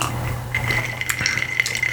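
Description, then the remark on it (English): Glasses clink in a toast, followed by soft liquid sounds of drinking a keto drink made with stevia over a steady low hum, with a few brief sharp taps and no talking. “So, we haven't taken a drink yet. So cheers.”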